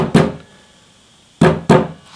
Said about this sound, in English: That's Boom's knock. If that really is Boom, then we have to open the door.